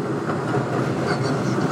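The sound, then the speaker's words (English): A train rolls past, its loud, steady rumble and rattle filling the whole moment with a dense, continuous roar and no voices over it. “Train.”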